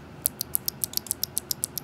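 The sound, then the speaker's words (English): A clicky Kale Box White keyboard switch pressed over and over, about a dozen crisp, bright clicks in a quick, steady rhythm with no voices, just faint background hiss. “So that's me clicking. It's clicky.”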